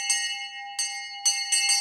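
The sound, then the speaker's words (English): A small bell rings several times in quick succession, each bright metallic strike ringing on with a sustained tone, loud with no one speaking. “Ow, you've really got to stop ringing that bell.”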